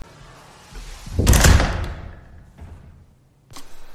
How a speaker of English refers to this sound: Let's shut that door. This door.